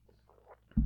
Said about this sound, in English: Just having a quick sip of water there, pardon me.